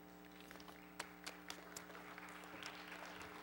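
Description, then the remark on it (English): Scattered applause from an audience at East Bay, a smattering of individual claps that stays fairly faint, heard over a steady low electrical hum with no talking. “Well, you don't clap for me.”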